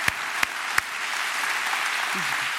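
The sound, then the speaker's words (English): An audience applauds its pastor on Father's Day, many hands clapping in a dense, steady wash of noise, with a few sharp, louder claps standing out near the start. “You give him a hand clap for all that he does, his leadership.”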